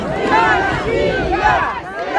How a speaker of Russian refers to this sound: Толпа продолжает негодовать, крики «Россия! За победу!».